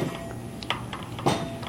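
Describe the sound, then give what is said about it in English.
A couple of dull, muffled bangs from a neighbor knocking the dust out of a welcome mat, irregular, over steady background noise with no one talking. “It looks like my neighbor's knocking out his welcome mat over there to get all the dust off. That's why you hear a banging in the background.”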